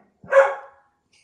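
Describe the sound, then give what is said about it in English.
A single sharp, loud dog bark, rising quickly and trailing off within half a second, with silence on either side. “Tiger is not a fan. He's very upset about the veal.”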